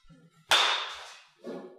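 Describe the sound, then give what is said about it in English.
A Marucci Cat Composite Pastime composite baseball bat strikes a ball with one sharp, loud crack and a bright ringing tail that fades over about a second, followed by a softer, brief rustle. “This is the Marucci Cat Composite Pastime.”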